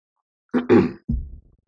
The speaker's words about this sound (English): Yeah, I didn't edit it out. You can hear me cough a little.